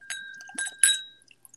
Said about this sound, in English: Did you guys pour yours out yet? I will pour mine out right now. I'll pour it into a Glencairn glass.